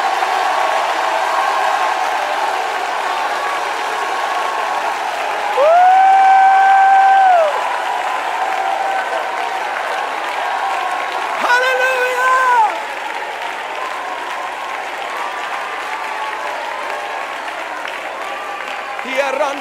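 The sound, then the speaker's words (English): A crowd claps steadily and shouts when urged to, a dense wash of applause with raised voices and brief sustained shouts or tones rising above it partway through. “I want you to clap your hands and shout.”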